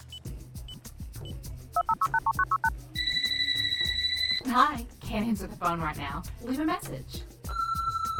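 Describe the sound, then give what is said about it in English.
A quick run of keypad tones is followed by a steady electronic telephone ring, then an answering machine greeting speaks briefly before a long, clear beep sounds. “Hi, can't answer the phone right now. Leave a message.”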